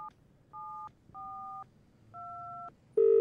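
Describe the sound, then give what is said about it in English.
Four telephone keypad tones beep one after another at an uneven pace, clear, then a louder ringback tone starts on the line. No one speaks. “So make the call!”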